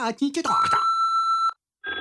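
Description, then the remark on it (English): A voice speaks briefly, then a steady electronic phone ring tone sounds for about a second, stops, and starts again after a short pause, loud. “Maria, get the damn phone, girl.”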